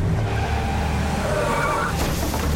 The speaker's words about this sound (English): And she did things in between that everybody knows about, like driving her Suburban through the front door of his house.